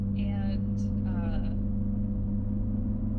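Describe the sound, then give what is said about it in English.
Steady low rumble and hum of road noise inside a moving car, constant throughout, with a brief snatch of voice near the start. “It's funny, it's so different being in the car, right?”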